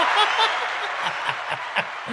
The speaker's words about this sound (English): Where's the round of applause? Nope, not that one. There it is.